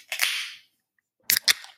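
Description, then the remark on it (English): A beer can snaps open with a sharp crack and a short fizzing hiss, then after a brief pause two more quick, bright cracks follow. No one speaks. “let's grab one and crack one, my guy.”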